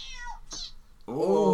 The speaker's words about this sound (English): I've got this cat. How's that doing anything for you? It's getting there. What about this cat?